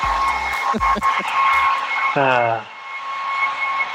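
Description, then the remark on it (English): A hair dryer running in a common area blows continuously with a steady, airy whir and a thin high whine, while a voice speaks briefly over it at the start and again midway. “What are they doing, vacuuming? No, hair dryer.”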